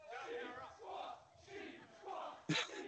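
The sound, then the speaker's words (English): A large crowd at a wrestling match cheers and yells in rising and falling waves during a test of strength, loud, with a sudden sharp burst of noise near the end. “Crowd's into it.”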